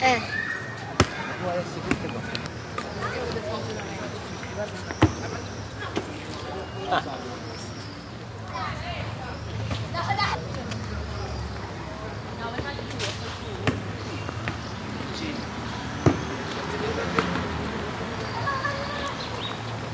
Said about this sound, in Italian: Poi quando tu tiri il pallone forte si sente quel suono.